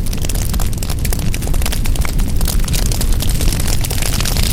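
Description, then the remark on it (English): A loud, steady roar of a big bonfire fills the whole clip, a dense rumbling whoosh with constant crackling texture and no pauses or voices. “This bonfire is intense.”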